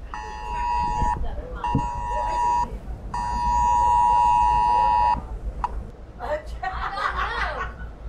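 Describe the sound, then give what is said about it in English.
A phone's harsh Amber Alert emergency tone for a child abduction blares in three loud buzzing bursts, the last one longest, while travelling near the New Mexico–Texas state line, followed by a person chuckling. “My phone was making a terrible alarm sound. And it was an Amber Alert for a child abduction in McGregor, Texas.”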